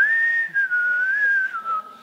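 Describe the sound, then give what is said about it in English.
Someone whistles a bright, wavering melody, the pure tone sliding gently up and down with brief breaks between phrases. No one speaks. “There's a whistle in his heart. He's singing, he's humming a tune.”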